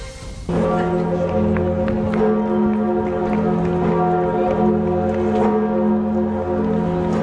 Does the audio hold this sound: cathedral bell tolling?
yes